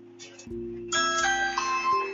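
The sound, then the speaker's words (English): A doorbell chimes with bright, ringing tones that layer over one another and sustain, fairly loud, with no one talking. “And the bell is ringing.”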